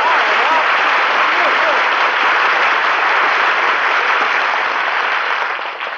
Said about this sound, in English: Gee, was all that applause for me?